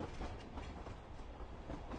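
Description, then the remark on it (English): A train heading to Beijing rumbles steadily along the rails, its low, continuous roar broken by faint, irregular clacks of the wheels, with no voices. “As these three people ride the train going to Beijing, there's really not much that can be said.”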